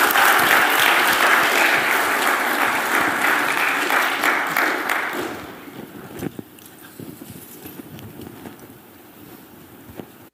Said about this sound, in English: And so can we just give them a hand clap? You guys can go sit down.